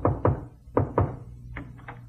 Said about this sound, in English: Suddenly, there was a knock on my door.